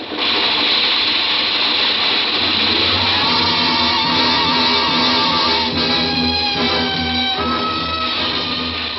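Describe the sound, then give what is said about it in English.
A subway train roars along in a loud, steady rush of rumbling noise as it shoots out of the underground onto an elevated trestle over a tenement street at twilight, with thin metallic squeals of the wheels rising in the second half. No voices. “And suddenly the train shot out of the underground onto the trestle.”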